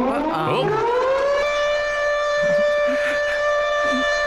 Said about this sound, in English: Mine is to set off the AE Houseman alarm.